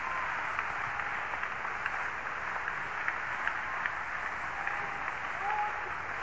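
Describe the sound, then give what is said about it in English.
An audience claps hands steadily for several seconds, a dense, even wash of many overlapping claps at moderate loudness with no voices rising above it. “Somebody clap their hands right now.”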